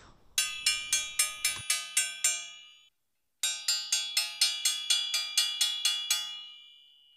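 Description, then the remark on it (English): A dinner lady rings a hand bell slowly in two bursts of steady, evenly spaced strikes with a brief pause between them, each clang bright and metallic with a short ringing decay, over a faint low rumble at first. “The dinner lady rings a bell slowly.”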